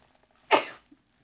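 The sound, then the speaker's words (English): A single sharp sneeze bursts out suddenly and fades within a fraction of a second, heard alone against near silence, moderately loud. “God bless you”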